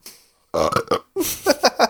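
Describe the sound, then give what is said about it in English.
Fairly loud hiccup sounds come in two quick clusters of short, throaty voiced gulps, separated by a brief silence, with no talking. “I literally got the hiccups.”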